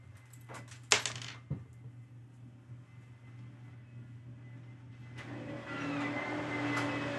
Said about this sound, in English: I think I'm considering actually just leaving the sound of the vacuum in the background.